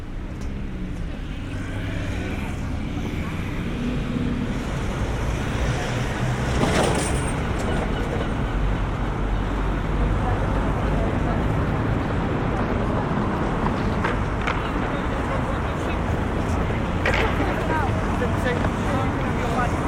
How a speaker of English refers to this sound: The sound of the traffic can be quite overwhelming, really, right, when you're trying to navigate. It's traffic and people and all sorts of obstacles which really disorientated me.